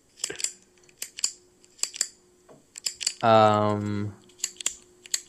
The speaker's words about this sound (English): It sounds like a pen, maybe clicking. Yep, it's a pen clicking.